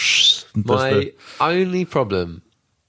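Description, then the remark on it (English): A voice mimics an electric car's synthetic engine tone: a short airy hiss, then three hummed, wavering tones with rising and falling pitch, each about half a second, moderately loud. “So it kind of sounds like it's got an engine, and then it goes.”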